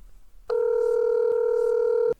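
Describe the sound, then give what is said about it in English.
A single steady electronic telephone ringback tone of an outgoing call, a clean hum lasting about a second and a half, fairly loud, with no voices around it. “I think she'll pick up the phone on this recording.”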